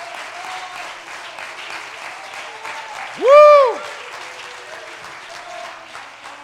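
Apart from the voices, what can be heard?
audience clapping hands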